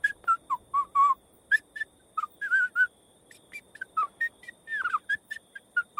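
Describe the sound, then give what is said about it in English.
A graveyard keeper whistles a bouncy tune while digging, in short, clipped notes that hop up and down in pitch, steady, with no talking. “Just having a little whistle.”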